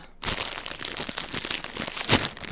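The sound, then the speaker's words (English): A snack bag crinkles and rustles continuously as it is pulled open, a dense crackling with a sharper tearing burst near the end, no voices. “We found Flamin' Hot Chipotle Ranch crunchy crunchy Cheetos.”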